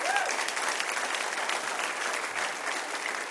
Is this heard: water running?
no